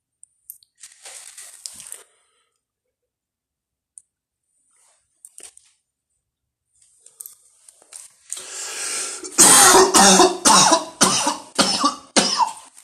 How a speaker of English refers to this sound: Yeah, oh, that cough was so nice. I love coughing.